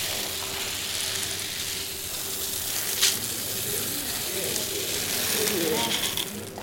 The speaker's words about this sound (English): Why don't you just go ahead and pour that in there? Make it a better measure. Again, we didn't have any wheat and barley, so this is popcorn we're pouring in there. Okay? There's a better measure.